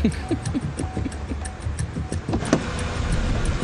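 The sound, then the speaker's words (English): A car idles with a low engine rumble while sharp clicks and small mechanical rattles tick along in an uneven rhythm as someone in a hoodie breaks into a woman's car and grabs a bag, then the engine sound swells steadily as they drive off in a Sonata. “Grabs a bag, jumps in the car, and they take off in a Sonata.”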